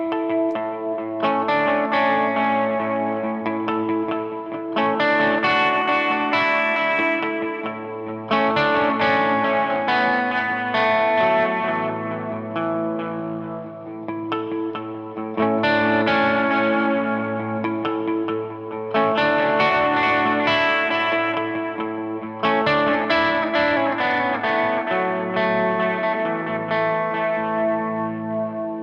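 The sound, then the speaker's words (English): Clean Telecaster electric guitar, played with the Storm into the Iridium on a Vox setting, with a slower delay and plate reverb from the Universal Audio Del Verb. It plays slow, sustained chords and arpeggios, each phrase trailing into lingering repeats and a smooth, shimmering reverb wash. The playing is steady and full, with no talking. “Here's an example using a slower delay and a plate reverb sound on the Universal Audio Del Verb, and I'm going to use the Storm.”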